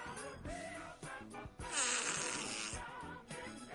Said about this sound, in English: Limpopo pastor farts on congregation to heal them from God's power, okay.